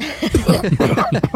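A voice acts out a character's fit of coughing after taking a huge bite of very dry turtle, a quick string of rough, voiced bursts, each hack choppy and strained, almost like sputtering laughter.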